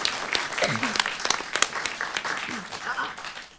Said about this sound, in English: First of all, providing lighting and special effects, tastefully. A round of applause